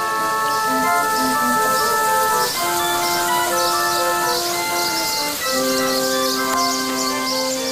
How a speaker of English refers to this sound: Here's another clip of the organ doing its hourly performance in the gardens of Alcazar.